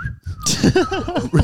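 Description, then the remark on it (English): A short, steady whistled note rings out for a moment, then gives way to close, animated vocal sounds, like laughing or playful voices, that continue to the end. “and you were pissed and I was in bed and I woke up and I'm like, why is he whistling?”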